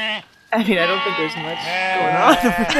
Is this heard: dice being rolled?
no